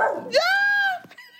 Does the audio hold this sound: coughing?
no